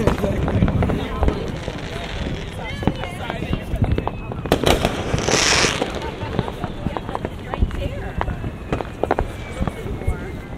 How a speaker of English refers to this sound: The most memorable firework.